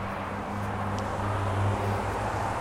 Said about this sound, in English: Sorry, I'm just going to let the traffic pass.